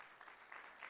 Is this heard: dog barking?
no